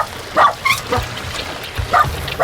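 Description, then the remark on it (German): A small Jack Russell terrier yaps in a handful of sharp, high barks, irregularly spaced and fairly loud, with quieter gaps and low rumbling noise between them. “den kleinen Jack Russell.”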